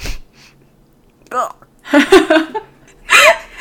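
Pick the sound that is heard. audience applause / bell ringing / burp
burp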